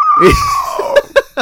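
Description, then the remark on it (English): A voice imitates a woman's scream with one drawn-out, high shriek that slowly falls in pitch, followed by three short, sharp bursts like stifled laughter, fairly loud. “So, like, she fucking screamed. Didn't say anything.”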